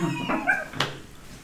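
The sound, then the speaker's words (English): A dog lets out a short, high-pitched yelp after its paw is stepped on, a quick whining cry followed by a sharp burst, with no talking. “I stepped on my dog's paw the other day, and he went Yelp.”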